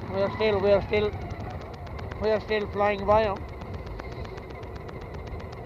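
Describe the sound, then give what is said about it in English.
A tiller-steered veteran car's 4.5-horsepower engine chugs steadily as it climbs a hill, with a quick regular ticking rhythm and low rumble, while a man speaks briefly over it in two short bursts. “We have only 4.5 horsepower.”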